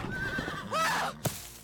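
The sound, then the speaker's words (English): A horse stops in its tracks and rears up in fear, letting out a loud, shrill whinny that wavers and rises before trailing off, followed by a sharp thump, with no talking. “Without warning, the horse stopped in its tracks, rearing up in fear.”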